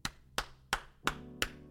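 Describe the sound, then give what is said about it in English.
Five sharp hand claps by one person, made in place of an ocarina, in a steady, even rhythm, each a crisp snap that fades quickly, with no voices in between. “I'm going to clap my hands.”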